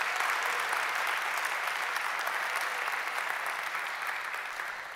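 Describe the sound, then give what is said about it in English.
An audience claps together as a hand clap of praise to God, in a dense, steady wash of applause that holds strong for several seconds, then begins to taper slightly toward the end, with no voices standing out. “Come on, let's give God a hand clap of praise for all of that.”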